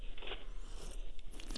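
Someone slurps a sip of a cocktail, dark chestnut in colour with an orange twist and a cherry on a pick: a few short, wet, hissing pulls through the lips in quick succession, fairly quiet and with no talking.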